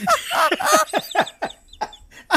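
A chicken squawks loudly in a rapid run of sharp, descending cries, about eight in a row, the later ones spaced slightly farther apart. No one speaks.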